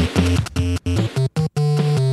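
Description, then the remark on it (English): The stage one theme music of Mario Bros., an early Nintendo arcade game, in stereo: bright, buzzy square-wave tones hop between steady pitches in a quick melody over a bouncing bass line, broken by a few short silences, with no voices. “It's an arcade game.”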